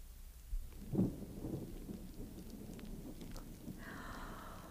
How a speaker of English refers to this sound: Oh, my, sounds like a storm blowing up outside, doesn't it, children?